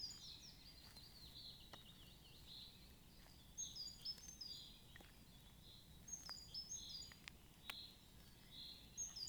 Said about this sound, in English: Bird songs resonate through the woodland.